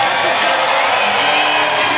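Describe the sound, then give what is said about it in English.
A large tennis crowd applauds and cheers steadily for the winning player Wu as he acknowledges the crowd after his victory, a dense wash of clapping with scattered whoops rising above it, loud and sustained throughout. “Well, Wu deserves the applause and the cheers, and he deserves his moment of victory.”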